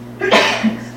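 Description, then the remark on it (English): A single sharp sneeze bursts out, a quick breathy explosion that fades within a moment, with a faint steady hum in the background. “Sorry. Good you. Bless you.”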